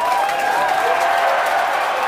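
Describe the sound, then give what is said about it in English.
A studio crowd applauds and cheers as a co-host is introduced, in a steady, dense wash of clapping, with a few high whoops and whistles rising above it for about two seconds. “Did you know that you had an in-studio crowd?”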